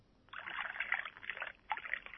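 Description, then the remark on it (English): Tea being poured into a cup, a steady trickling splash that runs for about two seconds with a brief dip and a fresh gush near the end. “The pouring of lovely. The tea.”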